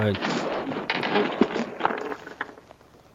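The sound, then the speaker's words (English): Noisy creaking and rustling of a chair as a person shifts their weight in it, punctuated by several sharp thumps at irregular intervals, with a brief vocal sound at the very start. “It's like me shifting my weight in my chair and making all types of sound.”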